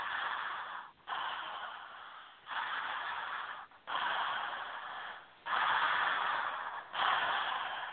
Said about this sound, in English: And just for a minute, connect your inhale and exhale. So it's like, we'll do it like a little baby breath.